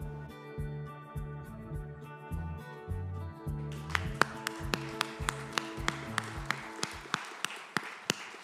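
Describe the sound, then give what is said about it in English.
A tune plays, and about halfway through an audience starts clapping along, sharp, evenly spaced claps keeping a steady beat over the music. “Yeah, in that clap, I want to say thank you to the tech team, but also to all the wonderful volunteers.”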